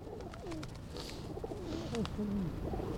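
Several pigeons being fed in Washington Square Park coo in low, throaty, rolling calls that overlap one another, over a steady outdoor hum of traffic and city noise.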